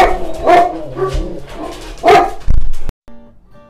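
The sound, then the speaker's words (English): A dog barks as a boy comes home: two loud, sharp barks about a second and a half apart with softer yips and whines in between, before the sound cuts off abruptly. “Hey everybody, sorry we had a little pause break there because the boy came home and the dog started barking, as you heard.”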